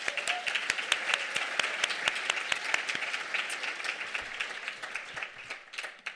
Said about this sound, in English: Just join me in a quick round of applause for our sponsors.